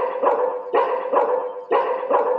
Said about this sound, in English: And you know, we have a dog down the street that mimics the earthquake alarm with its bark.